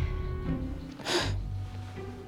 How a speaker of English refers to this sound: …, with a sneeze like yours, that says a lot about your lung capacity.